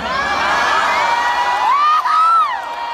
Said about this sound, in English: Okay, so the crowd's with her.